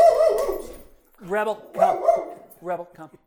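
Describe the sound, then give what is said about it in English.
A dog named Rebel barks several times in short, sharp bursts, fairly loud, with brief pauses between the barks. “I just want everyone out there to realize the dog is barking at Darcy and not at David for a change.”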